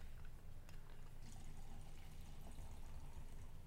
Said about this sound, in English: We were trying these, I was pouring alcohol into them. Oh, yeah? Give me a shot. And my mind was like, yeah, these are okay. And then just pouring alcohol into it.